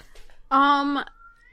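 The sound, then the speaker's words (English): A single loud cat meow lasting about half a second, sharp and strained, from a cat stuck in a couch, with faint background noise before and after and no talking. “Sorry, I got attacked by a cat. For the cat noise”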